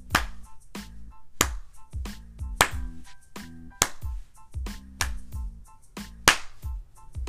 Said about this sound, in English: we give you not one, not two, not three, but we give you six claps of acknowledgement to let you know how much you mean to us.